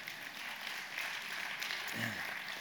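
A church audience applauds a staff member being introduced, in a steady, dense patter of many hands, fairly soft and continuous throughout, with a brief murmur of a voice near the end.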